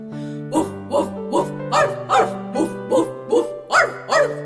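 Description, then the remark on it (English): A voice imitates a dog barking, giving about eleven steady, rhythmic woofs and arfs, with a sustained low musical tone droning underneath. “Woof, woof, woof, arf, arf, woof, woof, woof, arf, arf.”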